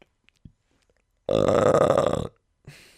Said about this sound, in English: I'm glad you burped every single time into the microphone.